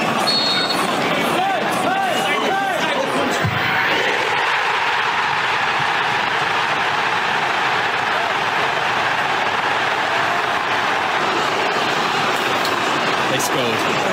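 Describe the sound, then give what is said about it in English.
A big stadium crowd roars loudly and continuously as Leeds take a penalty about three minutes from time, many voices blending into a dense wall of noise that surges after a few seconds and stays high throughout. “Did I hear some bad language in the crowd?”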